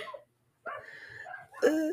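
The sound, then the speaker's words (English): A female dog outside barks in three short, harmonic bursts with a brief pause after the first, each one drawn out into a slightly howling tone, fairly clear and with no talking. “You have no idea what is going on outside. She's chiming in. Showing She's her support. Like, it's the midnight bark.”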